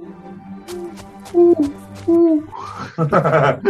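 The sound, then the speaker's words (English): A person imitates an owl, giving two loud, drawn-out hoots a moment apart, followed by a rising whoop and a burst of excited vocal sounds. “I do a good owl impression.”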